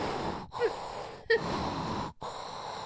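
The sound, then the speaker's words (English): A voice imitates the heavy, labored breathing of a masseuse leaning her full body into a massage: a few broad, breathy huffs and gasps in an uneven rhythm, moderately loud, with brief pauses between breaths and no words spoken. “She's breathing hard.”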